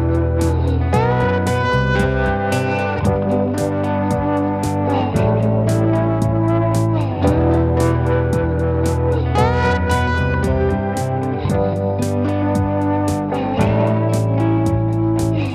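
An electronic keyboard plays sustained chords and gliding melodic lines inside a loud, dense music mix, with steady rhythmic hits running throughout and no voices.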